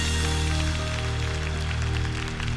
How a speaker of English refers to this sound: Clap your hands for this beautiful service.